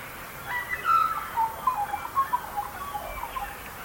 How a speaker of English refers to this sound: You might have heard some other birds featured in Ian's recording. Did you hear the Australian magpie?